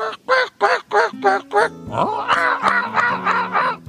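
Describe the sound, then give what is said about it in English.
A man's voice imitates a made-up bird call, a rapid series of about six nasal, quacking honks followed by a longer warbling, squawking run, loud with no other sounds. “I like to do all different types. Bird calls.”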